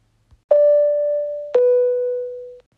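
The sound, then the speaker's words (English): An airplane fasten-seatbelt chime: two clear bell-like tones, the first slightly higher and the second a touch lower, each ringing out for about a second with no voices around. “At least I don't think those were in use, those chimes to buckle your seatbelt.”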